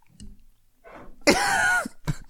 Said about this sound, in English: I can't clear my throat.